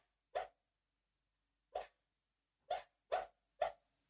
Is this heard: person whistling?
no